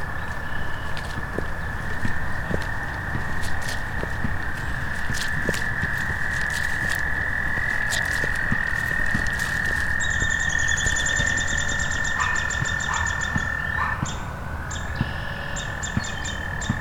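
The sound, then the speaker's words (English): A dense chorus of frogs croaks and trills steadily throughout, with scattered clicking calls mixed in; partway through, a bird begins singing high above the chorus. No one speaks. “A lot of frogs too.”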